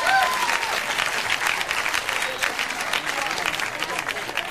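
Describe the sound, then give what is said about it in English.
The non-smokers in a crowd clap steadily for several seconds, a dense, bright patter of many hands at fairly even loudness, with faint whoops or voices mixed into the applause. “By round of applause, non-smokers.”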